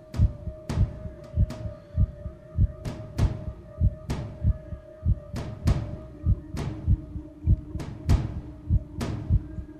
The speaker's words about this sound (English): Hear heartbeat. Here it comes.